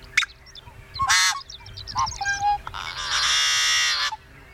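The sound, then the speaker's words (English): A yellow-headed blackbird's song: a few short harsh clucks and chips, then a long, loud, buzzy screech like a rusty gate creaking open, heard alone. “In fact, the yellow-headed blackbird's song has been described as a rusty gate opening, you know, sort of really screechy, miserable stuff.”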